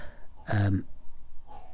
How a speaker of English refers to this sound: That's my son coughing.